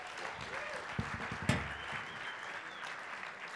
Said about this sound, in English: Okay, well, it's awesome. Give her another round of applause, please.